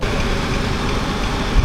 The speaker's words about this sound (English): Traffic.